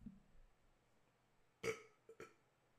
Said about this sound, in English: I got a burp.